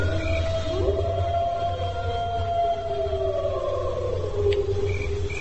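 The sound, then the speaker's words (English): Long, drawn-out wolf howls rise and slowly fall, several voices overlapping in a mournful chorus, with a low steady rumble beneath and no one speaking. “Number 5 is quite good. Just the pure awoo.”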